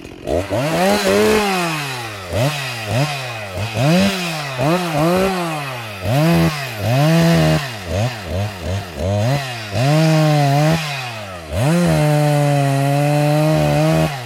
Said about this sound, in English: As a Wisconsinite, we all recognize the sound of the chainsaw.